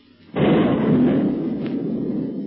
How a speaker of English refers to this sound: When a sound like thunder reaches their ears, the octopus boat is shelling the cave, and as the bombardment continues, it begins to look as if the secret police will not escape this time.